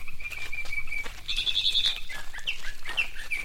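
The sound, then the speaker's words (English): A mockingbird calls out to its mate in a steady run of high, thin chirps and whistled trills, moderately loud, with no talking over it. “That's the call of a mockingbird.”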